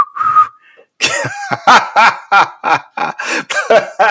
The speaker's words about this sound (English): Blow the whistle.